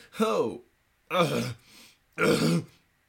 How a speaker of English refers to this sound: Let me clear my throat.